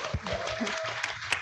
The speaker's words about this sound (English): So thank you again. Can we give her a second round of applause?